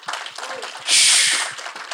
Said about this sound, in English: So could we get one more standing round of applause for our pastors? Come on, man.